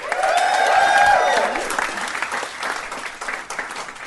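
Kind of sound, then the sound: crowd, audience round of applause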